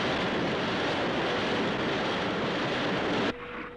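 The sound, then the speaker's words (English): Thunderbird 4, a small craft, plunges into the water with a loud, steady rushing roar of churning water and engine noise, continuous, then cuts off abruptly, leaving a faint low hum. “And that is a lovely shot of Thunderbird 4 entering the water.”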